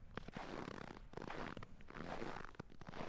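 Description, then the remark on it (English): Crunchy, squeaky compressions repeat in a steady, uneven rhythm, made by someone mashing a bowl of cornstarch to sound like boots packing down fresh snow. The sound is fairly full, with no voices. “What you're really hearing is someone mashing a bowl of cornstarch, a door in the studio, and crackling cellophane.”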